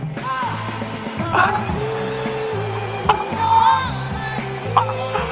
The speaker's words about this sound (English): Because pretty soon, this place will be full again. Yes, it will. Until then, cue the crowd noise.